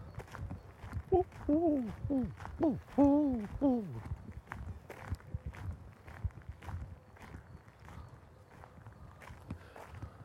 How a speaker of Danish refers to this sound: Fuglesang her til morgen.